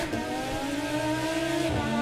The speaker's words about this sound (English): Yes, here's my car.